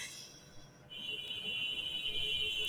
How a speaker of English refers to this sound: So you probably hear the beeping out there. They're the motorbikes here in Vietnam.